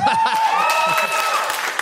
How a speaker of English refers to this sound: I thought we were about to have another woo situation because that woo before the clap was really loud. But then you backed it up with a clap, so it was all right.